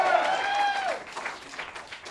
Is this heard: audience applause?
yes